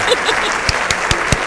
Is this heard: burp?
no